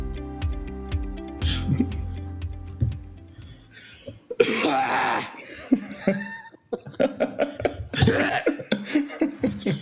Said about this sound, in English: Have to get that out. I try to like cough like that on purpose, you know, for comedic effect. I find that it usually like, you know, binds us together in a fellowship of sorts.